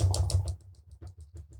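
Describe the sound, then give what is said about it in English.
A quick improvised drum roll of rapid knocking thumps, loud and dense at first, then settling into a steadier run of lighter raps, with no voices. “Sounds like somebody's banging. Like the feds are banging like, at the door.”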